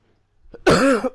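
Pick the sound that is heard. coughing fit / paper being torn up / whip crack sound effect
coughing fit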